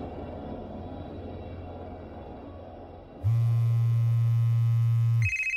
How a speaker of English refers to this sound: I was awoken by the sound of my cell phone ringing. Still half asleep, I pawed through my pockets for it and mumbled a hello.